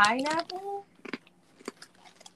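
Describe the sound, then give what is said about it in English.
A short voiced sound opens, then crunchy chewing follows: a few irregular, crisp bites and crunches at moderate loudness, with quiet pauses between them, as snacks kept in a Ziploc bag are eaten. “Yeah, we're crunchy still.”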